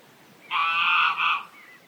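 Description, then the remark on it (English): A harsh, rasping squawk from squabbling birds, pure white adults and 3 dirty brown juveniles, one long burst then a shorter one, fairly loud, over a soft background hiss of wind with a song thrush singing behind. “And behind that rather unmusical sound, and the sound of the wind, which I'm sure you can hear too, is a song thrush.”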